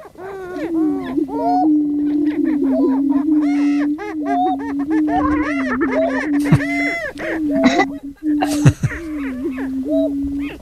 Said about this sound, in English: This is the greater prairie chicken, and this is probably not it either, but yeah, it has a weird sound, so I'll play it for a second.